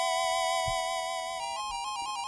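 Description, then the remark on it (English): Chiptune music from the video game Shining Force Gaiden 2: The Sword of Agia, made with an 8-bit sound engine, with bright square-wave tones holding a steady melody note before stepping into a quick rising and falling pattern, plus soft low thumps underneath. “This song is a good example of awesome work that was done with those 8-bit sound engines back then.”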